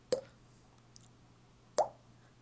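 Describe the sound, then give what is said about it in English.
Someone imitates water dripping with their mouth: two hollow, wet plops about a second and a half apart, each with a quick upward-bending pitch, over a quiet background. “I'll be the sound of water dripping.”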